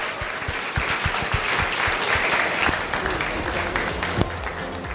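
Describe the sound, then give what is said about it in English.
Sustained audience applause, a dense patter of many hands clapping at steady loudness for several seconds, with a few sharper individual claps standing out and no voices over it. “And big round of applause”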